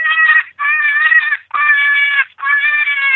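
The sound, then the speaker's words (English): A jackrabbit distress call, the "Lightning Jack" sound played from a FoxPro electronic game caller, taken from an old jackrabbit recorded in Texas during lightning: four loud, drawn-out, high-pitched squealing cries in steady succession, each about half a second to a second long with brief gaps between. “That was an old jackrabbit that was recorded in Texas while there was lightning going on, so that's how he got his name.”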